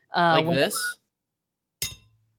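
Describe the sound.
A voice is heard briefly, then after a pause a steel beer bottle opener gives a single sharp metallic clink with a short ringing decay.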